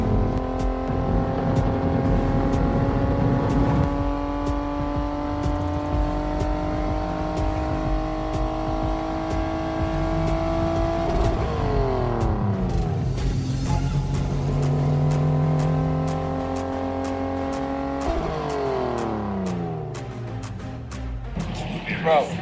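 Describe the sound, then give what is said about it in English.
A car used to establish pit road speeds on a racetrack revs hard and climbs in pitch toward over 100, dropping sharply at two gear shifts before pulling up again, loud throughout, with voices faintly underneath. “We got to get up over 100.”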